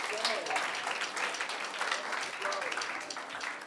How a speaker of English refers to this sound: You can clap for that. Come on.